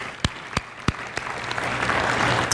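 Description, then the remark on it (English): An audience at a Sunday church service in an Ohio State context breaks into applause: a few sharp, separate claps at first, quickly swelling into steady, dense clapping that holds at a moderate level, with no voices over it. “Just in case you're wondering, we're not clapping for hook 'em horns.”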